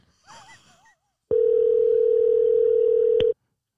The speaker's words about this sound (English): We're going to call her. We're going to call her. And welcome her on to A Moment with M&MJ. All right, here we go. Phone ringing. Phone ringing.